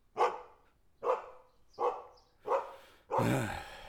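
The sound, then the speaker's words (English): A dog barks four times at a steady rhythm, then lets out a longer, harsher bark or growl at the end. The barks are loud, with no talking. “I gotta see what the dog's worked up about.”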